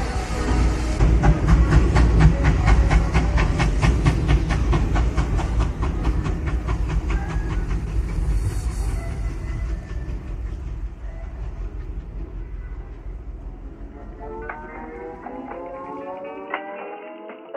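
A train rumbles loudly with a steady hiss of steam and a rhythmic clatter, then the noise eases and a thin metallic squeal rises near the end as it slows.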